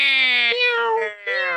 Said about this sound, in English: They don't meow at other cats in the same manner of, you know, the sort of the meow of I want food or I want your attention.